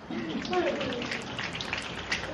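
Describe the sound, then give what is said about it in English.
A crackly, heavily distorted public-address recording from a school assembly hisses steadily like rain pattering on concrete, with a faint, muffled voice buried beneath the static throughout. “That sounds like rain on a concrete.”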